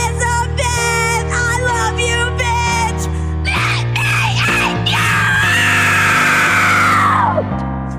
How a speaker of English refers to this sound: Now scream.